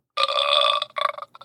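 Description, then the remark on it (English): A fart sound effect played by punching the buttons on a sound machine (sound box): a loud, buzzy, sustained rasp lasting over half a second, then a few shorter sputtering bursts trailing off, with no one talking. “That's on the sound box. Sound machine thing. I'm punching the buttons.”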